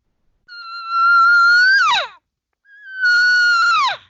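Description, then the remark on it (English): A cow calls twice with a shorter, more urgent cadence, each loud, bellowing call holding a steady, slightly rising tone before dropping sharply at the end. The second call comes after a short pause, with no other sounds around. “So see, she's changing the cadence of that cow sound.”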